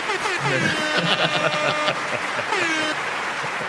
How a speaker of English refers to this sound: we are filming in front of a live studio audience, and both of us are pantsless. That's what all the applause was for.